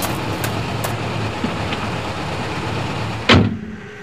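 A truck engine idles at the roadside with a steady low rumble, a few faint clicks early on, then a sharp door-like clunk near the end before the sound thins out.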